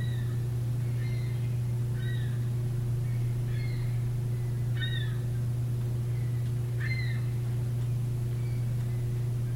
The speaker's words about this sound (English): Maybe opening our hearts to the birds that we hear outside. Calling at the twilight, living their daily cycle, the cycle of their life,